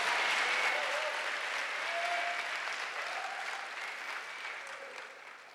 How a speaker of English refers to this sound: Clap for God, the greatest person.